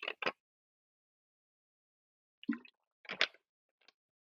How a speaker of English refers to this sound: Well, excuse me. And take some water.